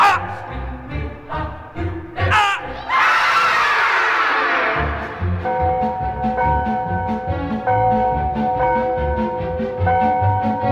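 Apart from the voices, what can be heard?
loud scream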